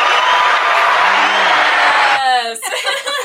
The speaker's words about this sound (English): What's our applause button? Is there? There's an applause button on there somewhere. There is. This one.